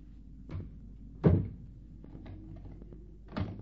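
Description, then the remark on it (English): A door is pushed shut with a solid thunk, surrounded by a few softer knocks and a final latch-like clunk as it is locked for the night. No one speaks. “You locked the door after your sister? Yes, I did.”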